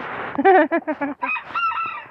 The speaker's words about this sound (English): And these are some more egg-laying hens, and this is Raphael. He's the lucky dude.